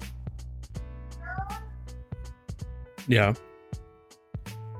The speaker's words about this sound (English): Yeah. Is it getting loud? My toddler just woke up. Oh, no, not at all. That's totally fine. Totally fine. I'm just hearing mom, mom, mom.